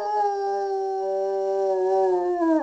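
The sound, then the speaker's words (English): A dog howls in one long, sustained, tuneful note, loud, holding steady before the pitch sags slightly at the end, with no other sounds around it. “the Singing Dog. I'll play this for you guys right now”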